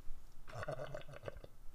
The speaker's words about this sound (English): It wasn't even a burp. That was a reverse burp. That was a guttural burp.